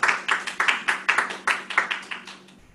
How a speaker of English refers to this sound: We'd like to give them a round of applause now, too.